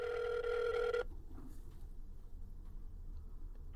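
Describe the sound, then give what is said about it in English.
A telephone rings once, a loud, bright electronic trill lasting about a second, then cuts off abruptly, leaving only faint room noise and no talking. “Back to my tiny phone booth.”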